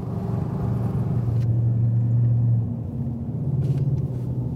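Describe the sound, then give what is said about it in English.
Steady, droning car noise from a vehicle driving on a road, a low engine hum with a rumbling tone that swells briefly midway, then eases slightly and holds on without any voices. “Definitely better driving through here in the daytime.”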